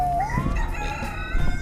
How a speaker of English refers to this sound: It's a chicken? Yes. Blood for you.